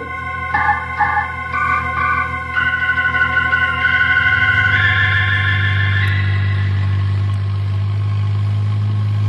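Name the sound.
car engine running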